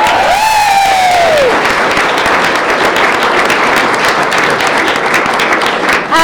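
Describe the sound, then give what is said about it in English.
A crowd breaks into loud, sustained applause and cheering, dense clapping filling the whole stretch, with a shrill falling whistle cutting through at the start. “So big cheers for”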